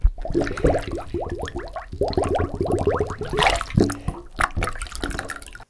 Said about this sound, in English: Yep, that's a sound which Andy Lowe assures me is bubbles caused by air being released from a plastic cup in a bath. Absolutely right.